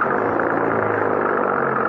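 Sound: car engine starting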